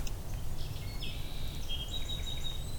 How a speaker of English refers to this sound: A song sparrow.